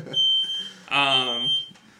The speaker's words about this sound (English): So, there goes my smoke detector.